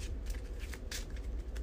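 Playing cards being shuffled back into an insight deck during a card game, a quick series of soft papery riffles and slides, fairly quiet, with no voices over it.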